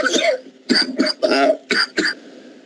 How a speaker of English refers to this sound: What? You can't be doing all that coughing, man. Hold on now. I can if I want to.